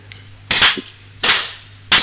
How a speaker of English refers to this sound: Okay, you do the 1, 2, 3, and we'll do the clapping after that. Un, deux, trois.